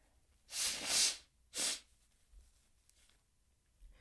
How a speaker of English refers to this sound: My nose is so plugged up. I'm just going to be obnoxious right now. This is just literally the mood that I'm in. I'm just going to blow my nose.